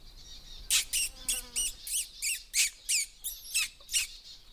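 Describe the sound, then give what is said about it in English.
A run of about nine sharp, high squeaky notes in a quick, steady rhythm, used to attract little birds in, clear with no talking. “It's often a good way of attracting little birds in, just these squeaky note noises.”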